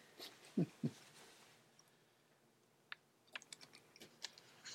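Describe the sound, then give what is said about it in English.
Someone chews bread: a couple of soft, thick mouth sounds early on, then a scattering of quiet, crisp clicks and smacks at an irregular pace, with no talking. “On a much more serious note, I'm chewing this bread.”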